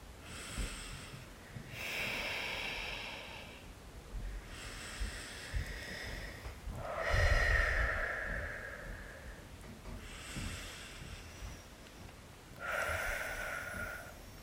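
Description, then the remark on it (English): Three slow, deep breaths taken together in a guided breathing exercise, each a full airy inhale followed by a long exhale, in a steady unhurried rhythm with no talking. “And we open in the most simple way, by breathing together, taking three full breaths.”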